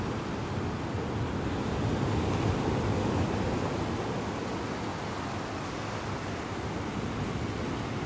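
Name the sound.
ocean waves surf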